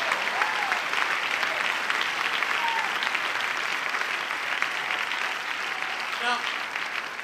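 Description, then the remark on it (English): Steady, sustained applause from an audience, a dense even wash of clapping hands that stays loud throughout with a few faint whoops or cheers mixed in. “That's awesome, because we clap for that one.”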